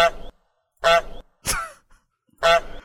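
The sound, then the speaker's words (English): Four short, loud goose honks blare in quick succession, each a brassy nasal blast separated by brief silences, used as a quiz contestant's buzzer with no talking over them. “Love a bit of goose game.”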